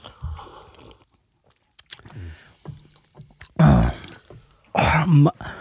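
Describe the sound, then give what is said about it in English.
Sipping and small wet mouth sounds from a few people drinking Pinot Grigio white wine from Ava Grace Vineyards after a toast, followed by two loud, breathy vocal exhales, like satisfied reactions after swallowing. “Take another sip, because my first sip was musky.”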